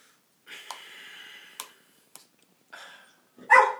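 A dog gives a few short, close-up barks and huffs with brief pauses between them, ending on a louder, sharper bark. No one speaks.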